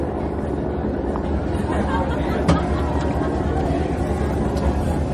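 A steady, rumbling police helicopter drone hovers over Griffin Park, loud and constant throughout, with a faint murmur of crowd chatter mixed into the background.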